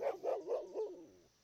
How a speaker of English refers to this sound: enough with the barking already.